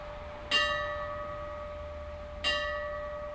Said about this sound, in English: The bell rang out 60 times for the approximately 60 men who died during the battle.